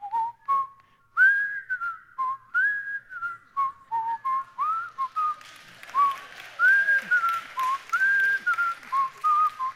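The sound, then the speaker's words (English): The whistled theme tune of The Andy Griffith Show, first carried by a lone clear whistler, then joined midway by a large audience whistling the same melody together, with a noisy, airy wash of many whistles under it. “And do you remember at the very beginning of that show, that whistle?”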